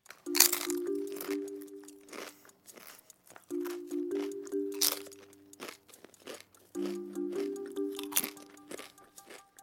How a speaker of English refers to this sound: That is the unmistakable sound of crunching chips.